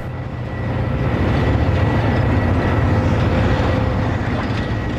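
Huge yellow mining rock trucks drive up and around an open-pit mine in a steady, loud, deep engine rumble with a faint whining hum on top, swelling slightly in the first second and then holding constant.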